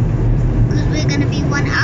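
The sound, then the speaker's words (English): A steady road rumble from inside a car driving through Wandsworth in four lanes of traffic, with a continuous low engine and tyre drone and muffled voices faintly over it. “Driving through Wandsworth now, four lanes of traffic.”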